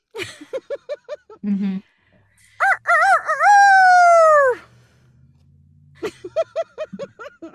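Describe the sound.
A person's voice imitates a rooster's crow: a loud, drawn-out cock-a-doodle-doo with a long sustained final note, framed by quick rhythmic clucking-like vocal bursts before and after.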